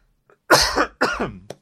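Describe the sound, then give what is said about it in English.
Two loud, harsh coughs close together, each a raspy burst with a trailing wheeze, followed by a short sharp intake at the end. Clear, with no talking. “Well, as I was kind of waking up, excuse me, I'm coughing today.”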